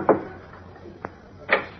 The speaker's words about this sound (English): Superman has arrived at Al Vincent's tenement hideout. Assuming his guise of Clark Kent, he knocks at the door of the ground floor apartment.